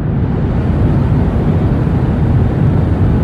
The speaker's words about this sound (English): Turns out that the 80 or so decibels of white noise that are pounding your ears from the jet's engines, they reduce your ability to taste salt, reduce your ability to taste sweet, and increase your ability to detect and enjoy umami.